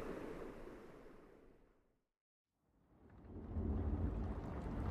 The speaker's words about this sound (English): Please, hang up your coat. It's awfully stormy out there tonight.